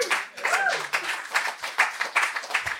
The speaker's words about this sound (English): Well, thank you for that applause without me even speaking.